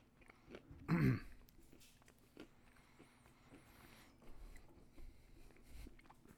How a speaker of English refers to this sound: Sorry, I gotta get the chewed up peanut out of my mouth.